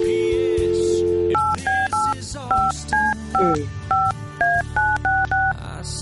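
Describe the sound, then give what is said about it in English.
A steady dial tone gives way to a quick run of about a dozen telephone keypad beeps, each a short two-pitched tone, pressed in an even rhythm with brief gaps between them, as a number is dialed again after an all-circuits-busy message. “Hope he answers his phone. Oh. All circuits are busy now. Yeah, all circuits are busy now because, okay, let's try that again.”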